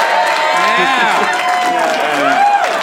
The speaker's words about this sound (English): Yeah. Big round of applause. Wow, yeah, wow.